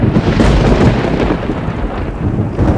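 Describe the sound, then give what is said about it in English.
A heavy roll of thunder from a lightning strike rumbles loudly and continuously, deep and booming, with a faint hiss of rain beneath it and no voices. “Far above, another eye of God opened, and my bodies did cower as fire lit up the face of the waters and lightning shot down into the depths.”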